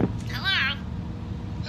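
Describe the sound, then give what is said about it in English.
A single short burst of a warbling telephone ring tone while placing a phone call, heard once and fairly clearly over a steady low background rumble, then fading out. “Okay, it's ringing.”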